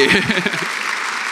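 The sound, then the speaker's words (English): An audience breaks into steady, dense applause as a couple comes up to be baptized, having just got engaged, a bright wash of many hands clapping at once, with a brief burst of cheering voices at the start before the clapping carries on alone. “And as they come up, a round of applause for two reasons.”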